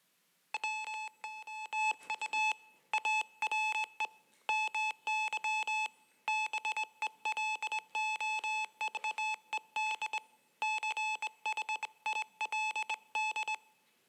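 Morse code beeps tapping out a fast, steady pattern of short and long tones, a bright high-pitched beep repeating in clustered bursts with brief pauses between groups, with no voices.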